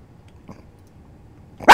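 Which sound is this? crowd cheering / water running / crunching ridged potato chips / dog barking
dog barking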